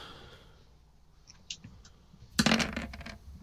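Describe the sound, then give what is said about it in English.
Dice clatter across a hard table during a tabletop game attack roll: a few light ticks first, then a louder burst of quick rattling clicks that tumble and settle within about a second. “Why are you rolling so low?”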